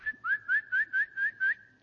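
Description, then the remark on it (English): A human whistles a quick, repeated call of six short rising chirps in a steady rhythm, clear, the kind used to summon a pet such as a dog or a cat, with no talking. “There seems to be a universal whistle for that.”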